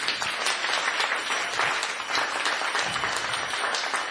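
A steady round of applause from a crowd at a school gathering, honouring a teacher: dense, even clapping filling all four seconds at a consistent loudness with no speech over it.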